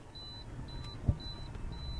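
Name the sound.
phone ringing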